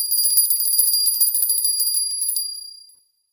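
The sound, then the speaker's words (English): A small, bright silver hand bell rings rapidly and continuously for about two and a half seconds, its clear high tones shimmering before fading out, with no talking. “Try if the silver bell works.”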